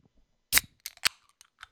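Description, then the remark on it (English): A Diet Coke can cracks open with a sharp pop and a quick burst of fizz, followed by a few small metallic clicks and taps, with no voices. “Got to get that sip. Tell us, what is it? Nice little Diet Coke there.”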